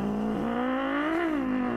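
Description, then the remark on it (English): A voice imitates the exhaust of a GMC Sierra pickup truck revving as it pulls away from a traffic light, a steady buzzy drone around low pitch that rises and swells briefly before settling, loud and continuous with no other talk. “I don't think he did it on purpose, but he kind of like gassed it when we left the light. So, you know, with his nice exhaust on his GMC Sierra.”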